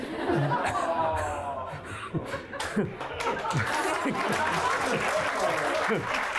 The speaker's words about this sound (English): I'll let the applause get out of the way because I know I won't get any.